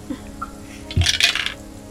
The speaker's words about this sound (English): everybody, please, or somebody, please, roll another D8. Not I, said the cat. Okay, yeah, I did already. I'm on it. But, or I can just drop it. That's fine.